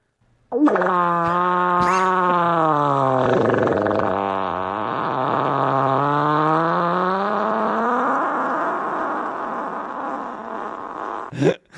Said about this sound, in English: The title of the video is "Whoosh." This man's fart sounds like a Honda Civic, and he's like he farts on his girlfriend.